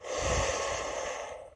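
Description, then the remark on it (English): A long, deep inhale drawn in through the nose during guided breathing, steady for over a second, airy and breathy before tapering off at the end. “Breathe with a breathing and a cleansing. Breathe in the positivity.”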